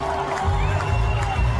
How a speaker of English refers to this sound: Awkwardly clapping. Look how old these people are.